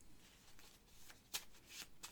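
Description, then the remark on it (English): A deck of board-game cards is shuffled after three event cards are mixed into it, a quick run of crisp papery riffles and flutters with one sharper snap partway through, heard on its own with no talking. “You mix this in to the existing deck. Shuffle.”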